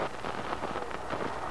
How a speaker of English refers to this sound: The storm that had broken earlier had subsided into a gentle but steady rainfall.